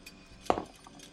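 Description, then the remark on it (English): A glass of water gives a brief, bright clink followed by a softer second tap, otherwise quiet, with no voices. “Do you mind maybe drink a glass of water and say what you just said again for me?”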